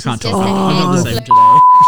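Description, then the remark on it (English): A voice speaks briefly, then a loud, steady censor bleep tone cuts in and holds for the last half-second, covering the end of the speech. “Children, if you're listening right now, cover your ears. Yeah, beep, beep.”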